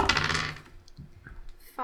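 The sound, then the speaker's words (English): A ten-sided die, rolled for damage, clatters onto a hard surface with a bright rattling burst, then tumbles in a few quick, fading clicks before settling, followed by a faint final tap. “Roll your damage. Do it.”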